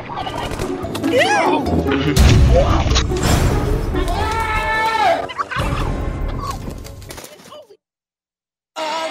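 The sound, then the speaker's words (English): A loud turkey gobbling in rapid, warbling bursts with a crash or thump partway through, then the sound cuts off to near silence before a brief return at the end. “That turkey showed absolutely no sign of remorse.”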